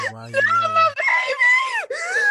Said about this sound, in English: How do you go from such a calm, beautiful moment to screaming?